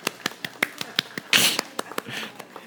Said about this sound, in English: Okay, one more golf clap as they go. Thank you guys.